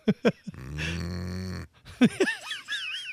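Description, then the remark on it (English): A person imitates a cow with one drawn-out, droning moo lasting about a second, framed by short vocal grunts before it and squeaky, warbling voice sounds after. “But in terms of the cow, yeah, mm-hmm. I don't know. No. I don't know about that one. It's a tough one. I know I couldn't make it.”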